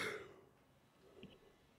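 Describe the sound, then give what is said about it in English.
A short, breathy yawn with a faint voiced edge, loudest at the start and trailing off quickly into quiet background noise. It is a single vocal sound with no talking. “I'm going to yawn myself.”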